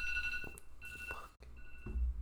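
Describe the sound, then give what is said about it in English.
An electronic alarm sounds with steady, high-pitched tones that hold on continuously, briefly cutting out before resuming, over a low rumble. “Unfortunately, this for some reason, the alarm does not qualify for turn down in this.”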